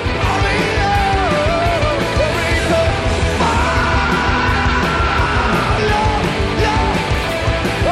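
A singer lets out a big, loud, sustained scream over a full, driving rock band playing live at a concert, the voice wavering and sliding in pitch above the dense wall of guitars and drums, getting the crowd fired up early in the show.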